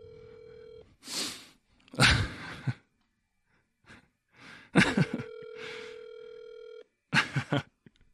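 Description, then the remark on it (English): A phone line rings with a steady ringback tone, two long buzzing bursts separated by a pause, while someone breathes and sighs audibly. “It's ringing.”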